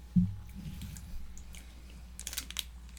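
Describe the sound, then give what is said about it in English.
Wet chewing of a soft, sticky coconut-covered marshmallow candy made of sugar, cornstarch and coconut, squishy mouth sounds with a few crisp crunches clustering near the end, no one talking. “It's not chocolate. It's like a marshmallow.”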